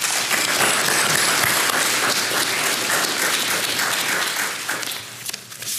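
An audience at a baptism service applauds steadily in support of a person being baptised, a dense wash of many hands clapping at a constant loud level for several seconds, thinning slightly near the end.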